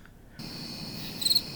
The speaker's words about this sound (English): Insert crickets chirping.